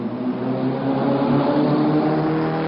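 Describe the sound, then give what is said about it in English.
A powerful sports car engine roars, holding a loud, steady growl with rich low harmonics for a few seconds, no voices over it. “But the image of eco-friendly doesn't really put them in the same league as a Ferrari or a Porsche, does it?”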